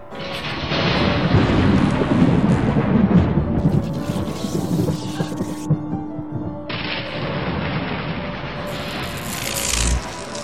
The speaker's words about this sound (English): Let's bring the storm.